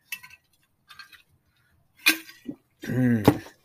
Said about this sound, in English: No, I'm chewing on ice, so I'm going to probably get yelled at for that, too, from someone.